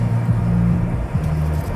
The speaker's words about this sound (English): It's late. I can hear a distant car thumping unrecognizable pop through the kitchen window.